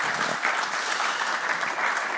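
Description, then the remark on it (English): An audience claps steadily, a dense, continuous patter of many hands at an even loudness with no break, the sound of a crowd applauding. “Anyway, ladies and gentlemen, a round of applause, please,”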